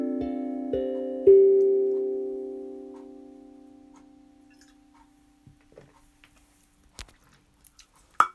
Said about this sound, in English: Yeah, I did it. I had to have me some water. I had to grab me some water. My throat chakra is definitely going to town at the minute.